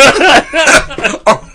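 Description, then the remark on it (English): A harsh, hacking cough in four loud bursts with brief gaps, rough and raspy with a voiced, croaking edge, like a person imitating a wheezy old man's cough. “Oh, what cough? Come on, Grandpa.”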